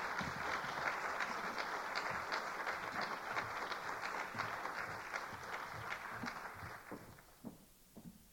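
An audience at a book reading applauds steadily for several seconds for two authors, a dense wash of overlapping claps that thins toward the end, leaving a few scattered final claps.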